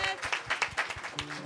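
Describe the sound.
An audience breaks into applause, many hands clapping in a dense, uneven patter of sharp bright smacks that holds steady at a moderate level with faint voices mixed underneath.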